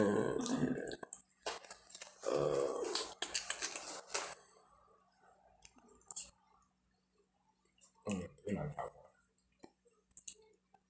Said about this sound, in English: Let me clear my throat.